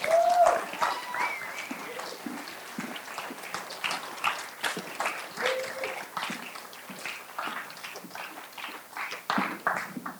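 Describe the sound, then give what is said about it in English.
A church crowd applauds steadily for about ten seconds to welcome the children's minister and others coming up, a dense patter of many hands clapping, with a few brief whoops or shouts rising above it near the start. “I want you to welcome them up with some applause with me, please.”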